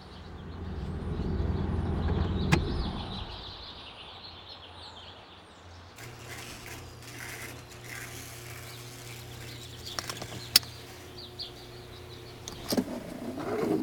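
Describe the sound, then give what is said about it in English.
A car engine rumbles and settles down as the car pulls into a garage, then a quiet hum follows with a few sharp mechanical clicks as the vehicle comes to rest. No one speaks. “I had just pulled into my garage.”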